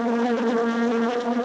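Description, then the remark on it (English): A gnat buzzing in one continuous, steady drone at a fairly low, unwavering pitch, as part of a performance of Dvorak's Symphony No. 9 in E minor at Roy Thompson Hall. The buzz is loud and rich, with no speech or other sounds over it. “9 in E minor, scored for 2 sheep, 6 swine, a gnat, and this soprano B.”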